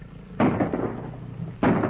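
gunshots fired

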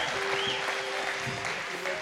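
audience applause

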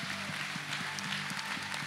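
audience applause

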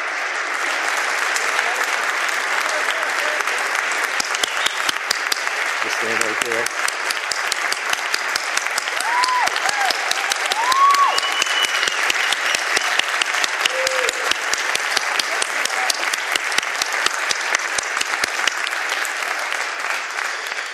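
audience round of applause

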